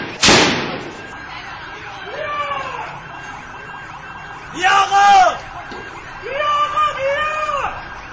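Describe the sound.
A single sharp, loud gunshot rings out at the start during a street clash between protesters and security forces, followed by several voices shouting and yelling in bursts, someone shouting to come back, with a tense crowd clamoring.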